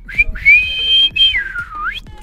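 A referee's shrill whistle sounds loud, blown to signal the end of a match: a short toot, then two long blasts, the last sliding down in pitch before rising again. Background thumps sit underneath.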